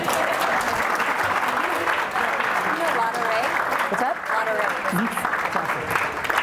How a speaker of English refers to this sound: Let's clap it up for him.